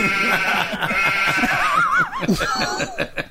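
A sheep bleats in a long, quavering, nasal cry that wobbles up and down in pitch before trailing off into shorter broken bleats.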